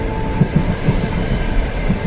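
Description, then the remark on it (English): A train rolls along the rails with a heavy, continuous rumble, punctuated by a series of soft, rhythmic clacks from the wheels. No voices are heard. “The next stop is his, and he hoists his heavy bag onto his back and gives me a wave as he steps down off the train and out of sight.”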